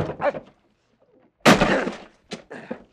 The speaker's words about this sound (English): Mr. Denby, we're going to break down that door.